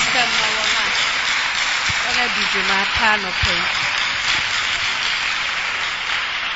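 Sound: audience clapping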